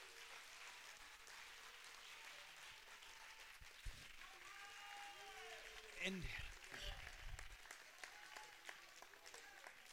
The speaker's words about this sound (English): Go ahead and give the Lord a hand clap of praise.